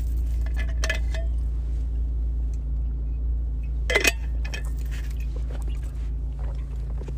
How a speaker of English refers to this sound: I'm just going to stop for a drink of water.